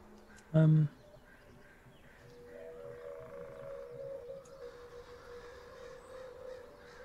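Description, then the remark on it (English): A single loud, harsh crow caw rings out near the start, at sunset over a swamp, followed by a quiet stretch with a low, steady droning hum in the background. “Hear the crows cawing as the evening sets.”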